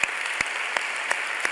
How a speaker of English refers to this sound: Can you give the Lord a great big hand clap?